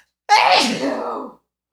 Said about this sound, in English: What do you like the most besides, obviously, it's not sneezing? I like that it makes me sneeze.